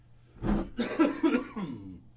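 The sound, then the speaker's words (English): A short coughing fit: one harsh cough, a brief pause, then a rougher run of several raspy, throaty coughs that trail off. No one speaks. “excuse me, jeez Louise, got to get some water.”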